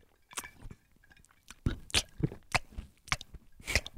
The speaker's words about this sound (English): was chomping.